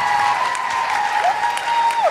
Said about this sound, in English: Vancouver, could you give yourselves an enormous round of applause for coming out, getting through the snow?